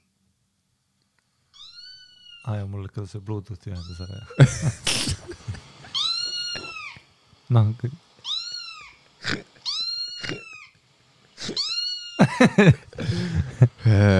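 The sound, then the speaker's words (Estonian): A voice imitates a kitten's mewling with a string of high, rising-and-falling squeaky mews, repeated in quick bursts, with a brief stretch of talking partway through. “See on see, et kus sa teed väikse kassipoja niutsemist.”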